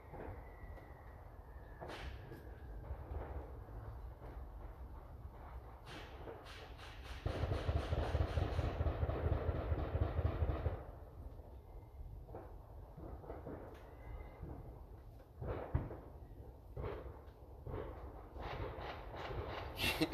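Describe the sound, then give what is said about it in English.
Scattered sharp bangs of mostly gunshots with some fireworks in the background, with a dense rapid-fire burst of crackling pops lasting several seconds midway, including some automatic gunfire, then more irregular loud cracks near the end; no one talks. “These are all, I mean, some are probably fireworks in the background, but mostly gunshots going off.”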